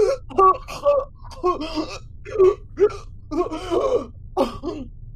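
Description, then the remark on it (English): A voice mimics choking and hacking up liquid, as if breathing it back in and inhaling vomit while trying to get it out, with a run of short, strained, gasping bursts, fairly loud, separated by brief pauses over a low steady background hum. “Oh, I imagine that, like, I keep, like, breathing it back in because I'm trying to get the liquid out of me, and, like, I'm almost, like, inhaling my vomit as I go.”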